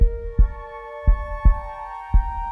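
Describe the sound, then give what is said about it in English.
A heartbeat beat: deep, muffled thumps in a slow, steady pulse, some landing in close pairs, with a sustained electronic hum droning underneath and no voices. “Wait, how about just a heartbeat?”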